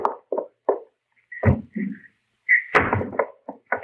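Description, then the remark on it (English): A side door opens as Hopalong Cassidy sneaks in, with a few light knocks and rattles, a short squeaky creak of the hinge, then heavier thumps as it swings, with no talking. “Well, if it ain't Hopalong Cassidy, and he comes sneaking in my side door.”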